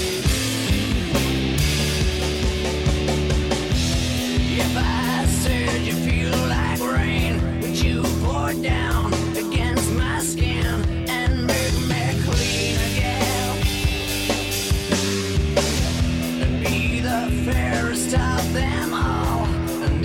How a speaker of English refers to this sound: Actually, I think I've just found their music. Three songs of theirs. I'll play some here.